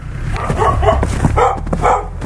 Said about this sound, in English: the two dogs in the middle that are barking